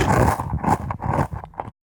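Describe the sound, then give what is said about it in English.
Chewing picked up through a high-fidelity contact microphone pressed to the chewer's head: a quick series of muffled, crunchy, rumbling bursts in a loose rhythm, fairly loud, with no voices, ending abruptly after under two seconds. “There's a fantastic example of the manufacturer chewing with the mic pressed to his head.”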